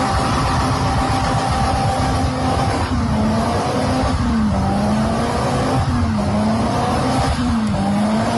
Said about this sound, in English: So that's burning rubber, right? That's where you rev the living daylights out of a car with the brakes on, the wheels spin, and you literally burn rubber. And there are like clouds and clouds and clouds and clouds of burning rubber smoke.